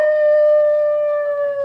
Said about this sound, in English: that sounded like a wolf. It can't be a wolf. We're too far from Hollywood and Vine.